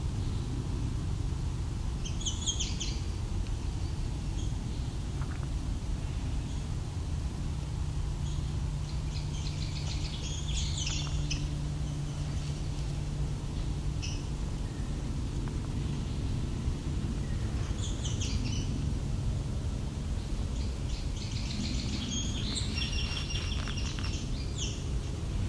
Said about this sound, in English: So a lot of variations on the yellow warbler call. Late in the season, I don't know if it's a young one learning a new call, older ones trying out new calls, new songs.